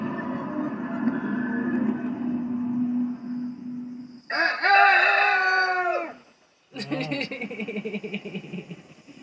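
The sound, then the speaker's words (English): A rooster crows loudly, a long, strained call that holds its pitch and then drops, followed by a second rough, broken crow after a brief pause, over a low background hum. “I knew exactly when he was going to crow.”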